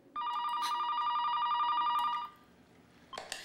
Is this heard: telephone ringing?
yes